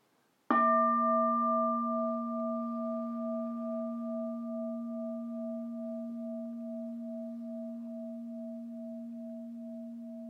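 A single bell is struck once, then rings on with a deep, steady hum and a softly pulsing higher overtone, fading very slowly over about ten seconds with no voices.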